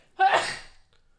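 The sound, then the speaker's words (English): A single sharp sneeze bursts out suddenly and loudly, then fades quickly into a breathy tail, with no talking around it. “Bless you.”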